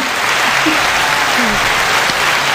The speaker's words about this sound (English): I'm gonna have to edit so many claps. I know. I'm here for it. Just like, we're applauding.